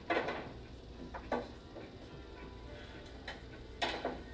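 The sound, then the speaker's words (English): Hard clacks of billiard balls knocking together as they're gathered into a rack on a pool table, a handful of sharp irregular clicks over a low, steady rumble. “I'll rack them up.”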